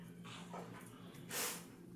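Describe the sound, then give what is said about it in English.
A puppy lets out soft whimpering breaths and then one louder, breathy huff, quiet overall, over a faint steady hum. “See, he's just like, again, even the dog, even the puppy is tired of the tapping.”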